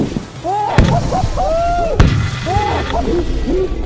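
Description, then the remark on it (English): Two sharp, loud blasts go off about a second apart, a live grenade bursting in water, with excited voices calling out around and between them. “Now we're gonna see if water actually protects you from a live grenade.”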